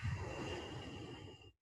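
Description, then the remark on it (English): A long, steady ujjayi breath pushed out through the mouth, after breathing in through the nose, with a soft, constricted hiss, lasting over a second before fading out. No speech. “If you're not, breathing in through your nose and out through your mouth.”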